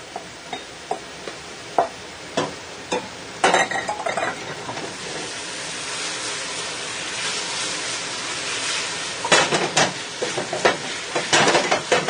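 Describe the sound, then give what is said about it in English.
Finely chopped red, green, and yellow bell peppers sauté in a pan with a steady, hissing sizzle, broken by sharp clicks and scrapes of a utensil stirring against the pan, with busier bursts near the end. No one speaks. “Second ingredient you want to add are your, I've got a small chopped, finely chopped red, green, and yellow bell pepper, and that's the next ingredient.”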